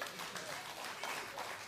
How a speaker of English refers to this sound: Someone ought to give the Lord a hand clap for that.